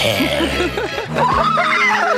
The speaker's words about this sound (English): I don't imagine horseman, except for the neighing, when I hear this voice.